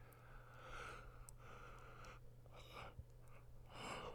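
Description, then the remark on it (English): A small, breathy yawn: several soft, drawn-out airy inhales and exhales, with no talking, ending on a slightly stronger breath. “Ooh, a little yawn there, sorry.”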